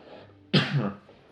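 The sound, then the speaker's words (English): A single sharp cough from swallowing wrong bursts out, followed by a brief rough throaty tail, with quiet room tone before and after. “excuse me, I had to cough, sorry. Not Corona, I swallowed wrong.”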